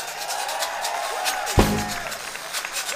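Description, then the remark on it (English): A crowd claps steadily in a dense, continuous patter, with a sharp thump near the middle and some indistinct voices in the mix. “Pick it up one more time for Mountain State. One more time? One more time. Get your hands together.”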